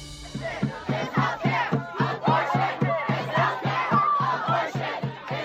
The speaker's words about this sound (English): You're hearing the sound of crowds gathered outside the US Supreme Court in Washington. Some shouting, "We will not go back, and abortion is healthcare." While others chant, "Hey, hey, ho, ho, Roe v. Wade has got to go."